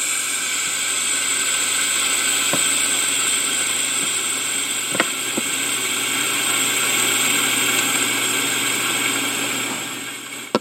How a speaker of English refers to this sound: I'll move this microphone closer so that you can hear this CO2 releasing. I'm going to press it the third time. Now listen.